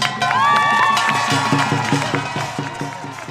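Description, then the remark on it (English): A large crowd at a rally with Asians for Black Lives signs cheers and whoops loudly in reaction to a speech, with high shouts and whistles rising over a dense roar of voices and scattered clapping that gradually fades. “It was clear from the crowd's reaction that what he said resonated with a ton of people.”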